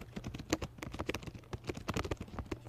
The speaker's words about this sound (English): Somebody is assaulting their keyboard, and I'm not it's sure me.